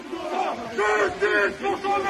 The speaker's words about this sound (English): Justice for Thomas, protesting in the streets, shouting, Muslims out now, Islam out now, and immigration, all these slogans.